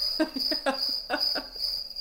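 A steady, high-pitched cricket chirping sound effect drones throughout, with a few faint low murmurs or muffled sounds underneath, no clear speech.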